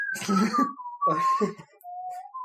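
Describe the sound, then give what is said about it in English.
Someone whistles a short melodic tune from the video game Deus Ex, clear pure notes sliding between pitches, accompanied by bursts of noisy background sound that come and go in the first half. “The guy in the street whistling the Deus Ex tune.”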